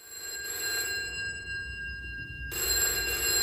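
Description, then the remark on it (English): An old phone box telephone bell, called from a mobile phone, rings with a tinny, metallic trill, briefly drops away, then resumes, drifting into the street at moderate volume over a low rumble of street ambience with no talking. “To scratch the itch, I ended up ringing the phone box from my mobile. And there it was.”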